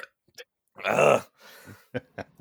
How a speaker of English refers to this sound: I apologize for the burp.